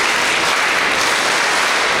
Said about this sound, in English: So we are going to do the clap for both of them at the same time. Remember the clap, okay? It is 1, 2, 3, 4, 5, 6. Ready? Go.